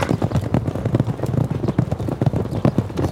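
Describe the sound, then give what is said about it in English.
Rapid, rhythmic hoofbeats of a horse galloping, fairly loud, with a steady repeating clip-clop pattern and no voices over it. “Flick your spatula to make your horse speed up.”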